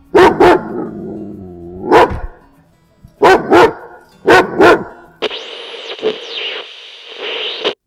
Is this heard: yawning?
no